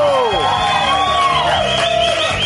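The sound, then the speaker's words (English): A loud crowd cheers continuously on the TV show PTI, many voices whooping and shouting at once with rising and falling cries layered over a steady roar for a couple of seconds. “But another year of these cheers for you?”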